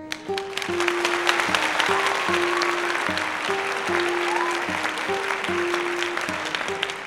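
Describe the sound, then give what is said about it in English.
A crowd applauds at the close of a bard's tale, with dense, steady clapping that holds for about seven seconds, while a simple melody of low, held notes plays underneath. “Ah, what a splendid crowd you have been.”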